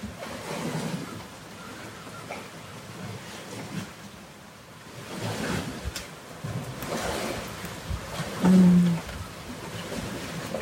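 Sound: rain falling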